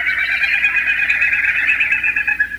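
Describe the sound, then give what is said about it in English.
Wilson's snipe winnowing, a non-vocal sound: a steady, fluttering, hollow whistle that pulses rapidly and wavers slightly in pitch, with no voices over it. “The boreal owl's call has been compared to a non-vocal sound of last week's mystery bird, the Wilson snipe.”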